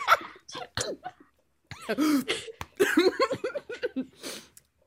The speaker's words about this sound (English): How did you just choke on that water?